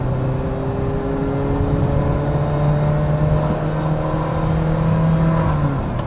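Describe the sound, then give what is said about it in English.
A Ferrari Mondial T sports car engine drones loudly for several seconds while driving, its pitch holding steady with slight rises and dips as if the throttle is gently worked. No one speaks. “TestDrive: Ferrari Mondial T”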